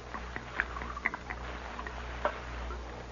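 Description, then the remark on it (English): Liquor is poured from a jug into a cup, a soft, quiet trickle broken by a few small gurgles and splashes over a low steady hum, with no one speaking. “Pour me some.”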